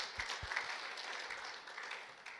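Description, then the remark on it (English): A church audience applauds its pastors at a morning service, many hands clapping together in a dense, steady wash of sound at an even level throughout, with a couple of low thumps early on. “Let's honour them and give them a round of applause this morning.”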